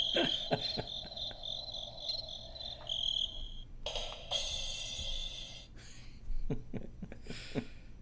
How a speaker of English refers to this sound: Crickets.